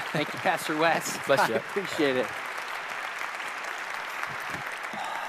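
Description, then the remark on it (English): The audience of Center Street Church in Calgary applauds warmly to welcome a speaker, a steady wash of clapping from many hands that continues throughout while a man speaks briefly over it in the first two seconds, then the applause carries on alone. “Would you please help me give a warm Center Street Church welcome to …?”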